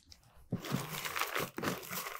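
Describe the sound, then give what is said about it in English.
Paper raffle entry slips rustle and crinkle as they're poured in and stirred around inside a container for a raffle drawing, a brief pause followed by two bursts of shuffling, each starting with a sharper crunch, steady and fairly loud throughout. “Mix it up good.”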